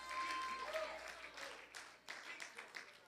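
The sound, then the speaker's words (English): A church audience at a worship service claps and shouts together, a dense wash of applause with scattered cheering voices for about three seconds. “Why don't you clap your hands one more time and add a shout to your hand clap.”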